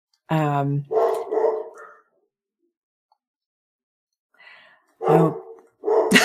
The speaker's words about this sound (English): I'm just going to wait for the dog to stop barking. Sorry about that.